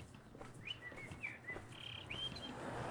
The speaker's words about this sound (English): Birds are singing.